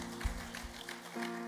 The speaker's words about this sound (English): Give the Lord a mighty clap offering in the house.